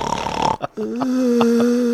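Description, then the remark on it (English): A voice imitates a snore: a rough, breathy snorting inhale, a brief pause, then a steady, low droning moan held for about a second, fairly loud. “He says I do a moan snore.”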